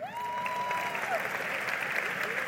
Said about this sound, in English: how many people are having their best business year ever? Raise your hand. Raise it high. First of all, let's clap it up for them.